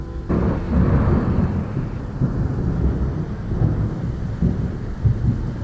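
distant thunderstorm rumbling

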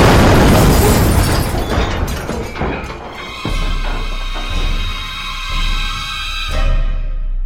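missile impact explosion

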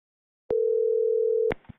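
telephone dial tone

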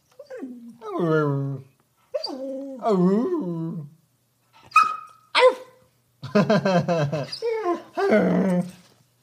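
dog barking and whimpering

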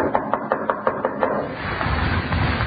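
knocking on a door

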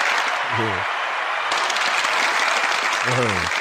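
audience applause and cheering

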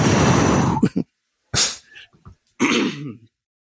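cough

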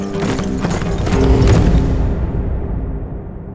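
horse hooves galloping

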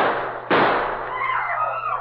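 gunshot

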